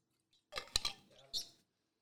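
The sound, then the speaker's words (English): A few quick clinks of a glass as someone gets some water, sharp and bright with a brief high ring, followed by a softer rattle and another clink, all fairly quiet. “A little bit of water. Hold on. I need some water, been yamming.”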